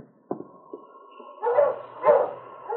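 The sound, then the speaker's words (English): Sled dogs bark and yelp, two loud drawn-out cries standing out over quieter whining and howl-like tones, with no talking. “The dogs see us.”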